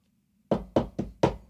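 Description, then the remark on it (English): Four loud, firm knocks by hotel housekeeping on a hotel room door land in a quick, even rhythm after a brief silence, heavy, with no voices present. “Which, by the way, they bang on your door at 9:30 in the morning.”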